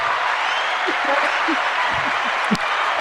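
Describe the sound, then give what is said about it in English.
A round of applause from the live studio audience of Special Chronicles Live, welcoming two guests. A dense, steady wash of many hands clapping holds at an even loudness for the whole stretch, with faint voices murmuring underneath. “So let's welcome with a round of applause.”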